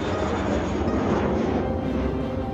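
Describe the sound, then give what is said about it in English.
A loud, steady engine roar of an airplane flying past, filling the whole moment with a dense, rushing drone and no voices. “Through the magic of animated film, you visited the world of toys and cars. And planes.”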